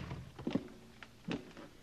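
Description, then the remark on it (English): Two dull wooden thumps about a second apart, like a front door being opened and then shut, fairly quiet with no one speaking. “I'm going out the front door.”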